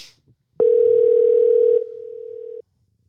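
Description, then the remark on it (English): A telephone dial tone hums steadily for about two seconds, loud, dipping slightly in volume before cutting off abruptly, as a phone call to a pizza restaurant is placed. No one speaks over it. “But I do want to say that we have to make a special phone call right now.”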